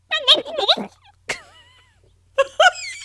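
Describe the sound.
A person imitates a goose's honking call with a few loud, nasal, warbling bursts separated by short pauses, rising and falling in pitch like a squawky gobble.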